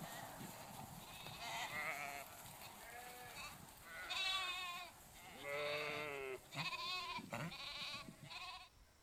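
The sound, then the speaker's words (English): Sheep, called by their young shepherd girl, bleat repeatedly, several wavering calls overlapping in quick succession, loud, after a few seconds of softer, noisier animal sounds. No one speaks. “clip of a shepherd girl, interesting, and she's calling out to the sheep.”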